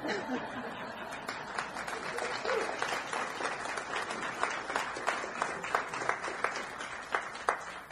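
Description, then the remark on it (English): An audience applauds steadily, many hands clapping in a dense, crackly wash that holds at a moderate level for several seconds, with a few scattered laughs mixed in. “You don't have to clap.”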